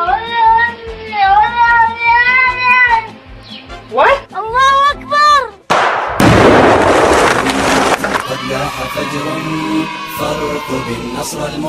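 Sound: cat meowing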